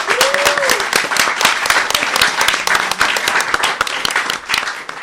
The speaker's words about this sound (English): Without you and without your energy and your positivity, our recordings would not sound as great as they do. So please give yourselves a round of applause.